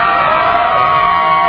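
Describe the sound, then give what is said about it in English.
A crowd cheers and yells loudly and continuously for the yellow team in a cheering competition, a dense wash of many overlapping voices with no pauses, sustained steadily for the whole moment. “Now, if we were just going on yelling, I think yellow would win, but we're not.”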